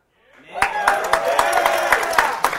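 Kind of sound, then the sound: crowd, audience applause and cheering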